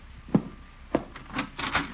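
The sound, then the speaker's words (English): A door is answered and opened: two sharp wooden knocks or latch clicks, then a scraping, rubbing creak as the door swings, with no voices. “I'll answer the door.”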